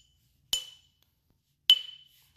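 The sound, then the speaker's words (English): Two bright, ringing clinks of drink containers tapped together in a toast, about a second apart, each with a short shimmering decay. Fairly quiet, with silence between them and no talking. “So, again, I have my bev right here. Cheers. I don't know if you can hear it.”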